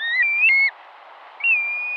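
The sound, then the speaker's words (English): A black-bellied plover, a shorebird that breeds in the Arctic, gives clear, plaintive whistled calls: a slurred two-part whistle, a short pause, then another long, steady whistle, over a soft background hiss. “Here's one shorebird that breeds in the Arctic, the black-bellied plover.”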